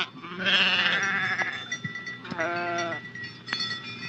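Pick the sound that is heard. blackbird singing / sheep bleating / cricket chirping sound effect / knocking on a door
sheep bleating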